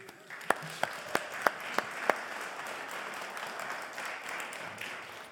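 An audience applauds: six sharp, evenly spaced claps ring out first, then settle into a steady, softer patter of many hands clapping together.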